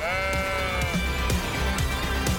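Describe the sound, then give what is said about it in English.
A ram caught in a thicket on Mount Moriah bleats in a long, wavering, nasal cry with strong harmonics, held steadily over a constant low rumble and soft background noise. “I tell you what, that ram's picked the wrong day to get caught in that thicket.”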